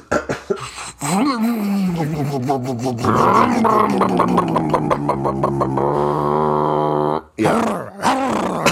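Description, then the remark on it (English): A person mimics a growling dog with their voice as a Foley effect for a dog at the base of a tree, a loud, drawn-out rumbling snarl that wavers in pitch and breaks off briefly before a final short growl. “That's just an unrelated dog that is at the base of the tree that made that noise.”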